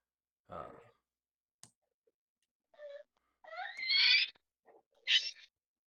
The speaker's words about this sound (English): Oh, I hear a squeal. I do. I believe was the baby and not the dog. Right. Luckily, we were foreshadowed. That was the baby. She got scared for a second.